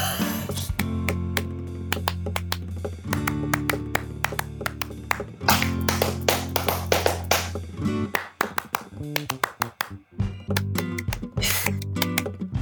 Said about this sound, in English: This is so hard because I hear you clapping as you're clapping.